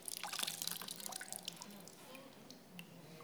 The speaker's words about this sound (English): they're really wet, aren't they? The water kind of leaks out.